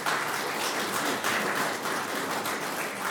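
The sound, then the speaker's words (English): Steady applause from a crowd, a dense crackle of many hands clapping at once that holds an even loudness throughout without fading, with no voices on top. “That deserves the first round of applause, doesn't it?”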